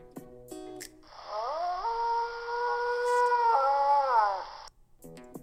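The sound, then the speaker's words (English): A canine howl, coyote or wolf, rises and holds for about three and a half seconds with wavering pitch, clear, with no one talking. “Coyotes have a very high-pitched howl with short bursts that rise and fall. And wolves have more of a drawn-out sound with growls and barks.”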